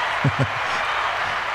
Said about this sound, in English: Listen to the applause.